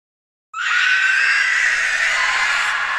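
A piercing, rasping Nazgul shriek from Lord of the Rings bursts in after a brief silence and holds loud and unbroken to the end, harsh and unearthly, with no voices around it.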